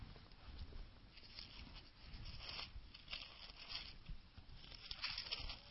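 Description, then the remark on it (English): Thin pages of a paper Bible rustle and flick as they are turned to Acts 3, a quiet, continuous papery shuffling with a few sharper flips and no one speaking. “I'm going to actually turn to this. Acts 3.”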